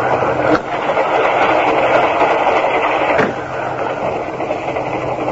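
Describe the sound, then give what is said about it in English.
A train running: a steady, loud rumbling roar with a low hum underneath and a couple of brief clunks, continuous throughout with no voices. “They let anybody ride trains these days.”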